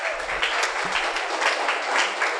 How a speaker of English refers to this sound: It's not a small thing. Clap for them. They are doing very powerful work.